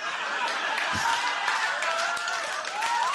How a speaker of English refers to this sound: Don't clap for that, you fucking weirdos.